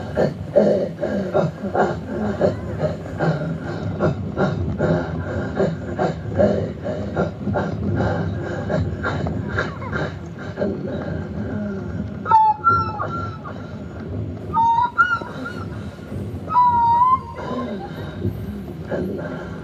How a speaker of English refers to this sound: let's have a quick listen into the Chukchi version of throat singing